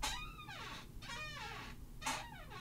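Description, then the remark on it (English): An office chair squeaks three times in a row, each a drawn-out, high, whining creak that bends downward in pitch, with no talking. “So right now I'm sitting on a crappy office chair that squeaks.”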